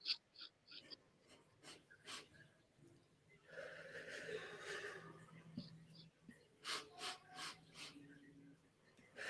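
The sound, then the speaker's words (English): A few quick sniffing inhales, four in a round, are followed by one long, steady breathy exhale, then another round of short sniffs begins, done as a breathing exercise to shift energy. Quiet and intimate, with no other sounds around. “And you just, like, it's 4 sniffs, you go, and then 1 long exhale.”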